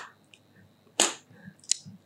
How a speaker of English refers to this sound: What if I clap for you? Like. Okay.